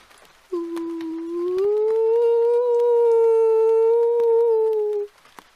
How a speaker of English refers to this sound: I am howling for my pack. I got left behind, you see. They don't know I got left behind.